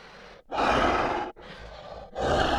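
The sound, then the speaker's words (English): A T-Rex named Buck snorts through flared nostrils while up on a counter drooling over breakfast, four rough, breathy blasts alternating between louder exhales and softer intakes, steady and heavy with no talking. “Sloppy Joe sprang back as Buck hopped up on the counter and drooled over the breakfast options. His nostrils flared noisily.”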